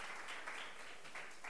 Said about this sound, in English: Clap, clap, clap for mommy.